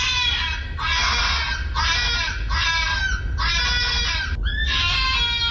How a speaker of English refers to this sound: Now, if you hear that screeching in the middle of June, I would probably be contacting the Gardaí, but it's, at this time of the year, it's foxes. Okay, so don't be worried if you hear something like this.